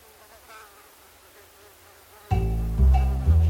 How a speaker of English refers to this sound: Dr. Jesse Lazier is walking around this morning toting his little brood of mosquitoes, each buzzing around in their own glass vial.